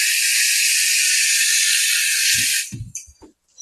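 Tofu sizzles loudly in a pan, a steady bright hiss that holds for over two seconds, then abruptly drops away into a few soft, low knocks.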